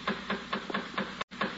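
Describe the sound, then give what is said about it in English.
A steady series of knocks on a front door, about five or six evenly spaced raps in quick succession over a low background hum, with no one speaking. “The door.”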